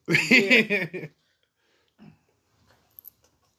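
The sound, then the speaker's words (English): A female dog growls at a man, a rumbling growl lasting about a second, rising and falling in pitch, followed by a few faint soft noises and quiet. “Maggie, why you growl at him?”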